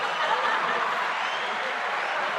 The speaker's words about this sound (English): Doesn't that sound better? Laughing and cheering. Yes. They go together.